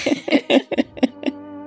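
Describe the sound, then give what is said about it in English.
A quick run of six sharp, voiced bursts in a fit of sneezing, loud and evenly spaced, with a steady low tone lingering after the last one. “God bless you”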